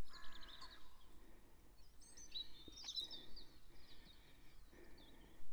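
Faint squawks of pheasants call out a few times across quiet, misty open countryside on Gerrard's Hill above Stoke Abbott, harsh and scattered over a soft outdoor background with no one talking.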